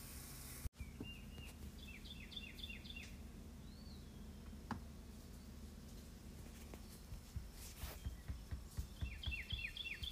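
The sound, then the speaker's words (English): Birds chirping in the morning in quick repeated bursts of high, descending notes while scrambled eggs are being made, with a few soft thumps from a dog, Sadie, scratching herself, and clinks over a low steady background hum and no talking. “You heard the birdies in that one, but I don't know if you could hear that little thumping noise.”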